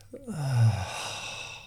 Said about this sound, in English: Take a big breath for me. Breathe out slow.